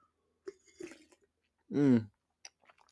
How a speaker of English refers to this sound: You know what? Let's take a little sip of my coffee.